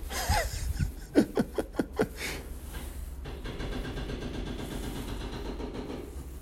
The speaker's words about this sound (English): in my early 1900s neighborhood are being torn out and replaced, which of course means that all of the streets are being torn out and replaced. And it's been a loud experience. Jackhammers. Yeah, this is what it sounds like inside the house.